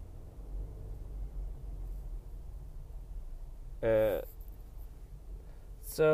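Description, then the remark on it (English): A heavy engine drones low and steady throughout, a laboring truck rumbling uphill in the background, while brief bursts of a man's voice cut in near the end. “We talked about, yeah, what's going on with this truck?”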